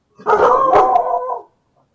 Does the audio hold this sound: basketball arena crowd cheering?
no